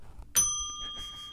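A single bright bell sound effect, played from an iPad, dings once and rings on with a clear, sustained metallic tone that slowly fades over a low background murmur.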